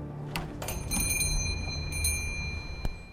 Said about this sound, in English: I hear the bells over the door jingle again as she leaves.